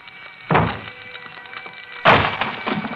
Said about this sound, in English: Inside a small, cheaply furnished apartment in a shabby, old-fashioned building glows the more sinister light of fast-spreading flame. Outside its locked door, firemen swing their axes at...